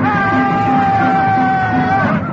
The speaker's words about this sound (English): They're shouting something. I can hear them. It sounds satanic.